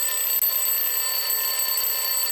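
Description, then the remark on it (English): A steady, shrill electronic ringing like a phone tone, sounding continuously with one brief break near the start, fairly loud and with no one talking. “It's more like a phone.”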